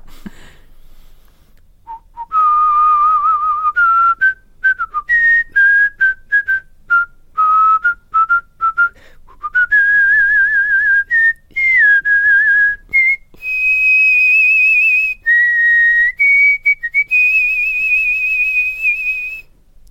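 Someone whistles a bouncy pop tune, clear and loud, in choppy phrases with brief pauses, the pitch climbing higher toward the end. No one talks.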